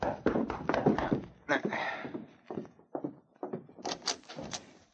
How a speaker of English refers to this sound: A short time later, Solitaire Jackson was in his hotel room when he heard a knock at the door.